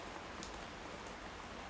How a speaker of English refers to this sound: It's been raining constantly for 3, maybe 4 days now.